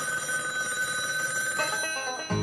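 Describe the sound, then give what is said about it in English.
A telephone bell, presented as Alexander Graham Bell's first telephone, rings continuously, a bright, steady trilling tone with layered high harmonics, holding at an even loudness before cutting off with a soft low thump near the end. “What if we was already modulating well when Alexander Graham rang his first bell?”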